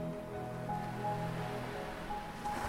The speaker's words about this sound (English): You can all hear the waves as they splash onto the shore. And then you hear them again as the sun peeks through the curtains and a new day in St. Paxton greets you.